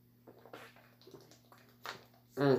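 Water being poured into a glass to drink, a brief splashing rush at the end after a few quiet handling sounds, with a low steady hum underneath.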